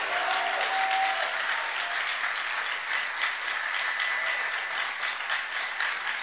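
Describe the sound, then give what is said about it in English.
Sustained hand clapping from a large audience, a dense, steady wash of claps holding at an even loud level for several seconds, with a brief voice or tone at the start. “Then let your hand clap be louder.”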